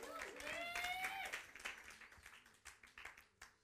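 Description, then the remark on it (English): A crowd claps steadily, many hands creating dense, irregular bursts of applause that gradually thin out, with a raised voice calling out over the clapping at the start. “You can clap.”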